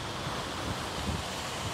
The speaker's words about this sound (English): at the height of high tide, water spilled over the seawall, washing out roads and sidewalks more than a mile and a half. The high water leaving cars stranded, boats swamped, and people flirting with danger to see the destruction up close.